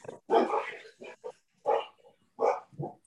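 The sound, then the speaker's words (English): Two big pit bull dogs barking in an irregular burst of deep, gruff barks, about six of them, the first one long and rough, with short gaps of silence between. “You have dogs now. I was like, yes. Yes. So, two big pit bulls.”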